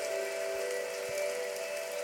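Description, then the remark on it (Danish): Steady rain falls in a continuous hiss with faint scattered patters, accompanied by a constant tonal hum; no voices are heard. “Ej, se, nu regner det i paradis.”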